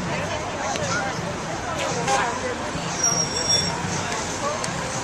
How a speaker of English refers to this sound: No, there's a car.